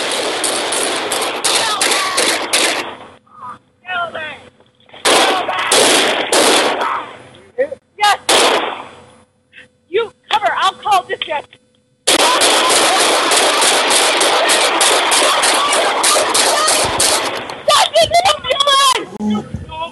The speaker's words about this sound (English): I remember watching. He just gets pulled over. He comes out with an AK and starts blasting them. And they light him up.